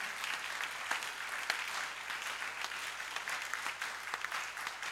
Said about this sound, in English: We are clapping for the King of Kings.